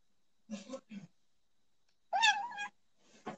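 A single clear, drawn-out meow from Benny, a cat about 6 months old, fairly loud, comes after a couple of short, low murmured sounds, with a brief soft noise at the end.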